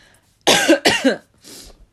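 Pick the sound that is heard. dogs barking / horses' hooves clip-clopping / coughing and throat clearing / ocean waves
coughing and throat clearing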